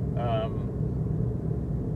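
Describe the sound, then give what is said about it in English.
A steady, low interior road rumble from a car driving across Palm Coast in light traffic fills the whole stretch, with a brief tonal voice-like sound near the start. “Okay, we're back here making our way across Palm Coast. Traffic is pretty light.”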